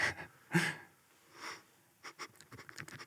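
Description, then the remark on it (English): Several quick nasal sniffs in a video, breathy bursts of air through the nose, come in uneven clusters and then a faster run of short sniffs near the end, with no talking. “the sniffing is in the video.”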